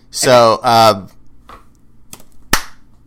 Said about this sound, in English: That's the spoilers clap. We're going to talk about what's going on in the house.